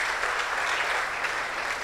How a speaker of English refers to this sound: Is that how you clap when someone surrenders their life to Jesus? The Bible says that there is joy in heaven over a sinner who repents. Clap those hands together.